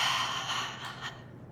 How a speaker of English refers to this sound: just imagine all of this energy coming up to the surface, breathing it out, breathing in, breathing it up, and breathing it out.